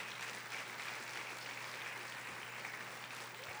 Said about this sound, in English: Why are you guys just clapping? You should be shouting.